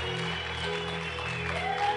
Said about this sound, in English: Keep clapping for them as they come.